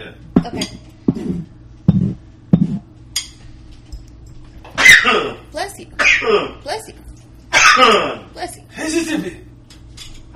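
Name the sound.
sneeze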